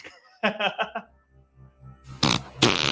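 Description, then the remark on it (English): A comic fart sound effect from a soundboard plays: a rapid sputtering burst, then a low rumbling stretch, followed by two loud, raspy blasts. No one talks over it. “No, I want to do the farts.”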